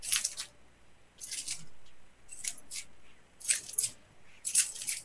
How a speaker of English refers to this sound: Yes, you hear keys. You hear jingling. Okay. A very rhythmic jingling. It's more of a clanging, but this is the best I can come up with on the fly, considering the thing I was going to bring for it, I forgot to bring.